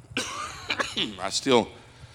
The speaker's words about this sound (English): doctor diagnosed me with a viral cough. So I said, you're going to be 3 months trying to get rid of that. I'm not contagious, so.